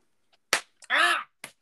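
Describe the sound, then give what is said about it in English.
A sharp hand slap on skin cracks out loudly, followed by a short voiced yelp and then a second, softer smack. “That's a really good slap.”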